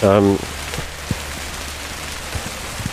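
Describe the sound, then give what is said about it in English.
Steady rain patters on a hard surface, a dense hiss broken by scattered louder drips, following a brief voiced sound at the very start. “Hard rain is going to fall now.”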